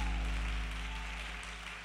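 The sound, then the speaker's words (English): An audience claps hands in praise in a dense, steady wash of applause, with a sustained low instrumental chord droning underneath throughout. “Clap your hands and give him a praise.”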